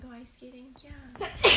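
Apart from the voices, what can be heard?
sneeze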